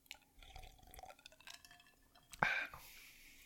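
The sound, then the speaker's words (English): Liquid is poured into a glass: a short, bright splashing pour that rises suddenly, then settles into a softer trickle, preceded by faint drips and small clinks. “After I actually poured it out.”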